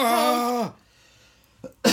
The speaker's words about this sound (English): I turned my head to cough. I didn't want to cough into the mic because I respect the audience.